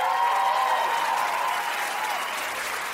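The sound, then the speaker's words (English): Sustained applause from a large audience that has risen to its feet as a speech ends, a dense, even wash of many hands clapping at once, steady and loud before easing slightly toward the end. “Everyone got up and started clapping.”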